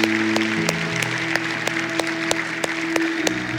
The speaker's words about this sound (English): Hey, can we give God a huge round of applause this morning? Thank you. You're so good to us.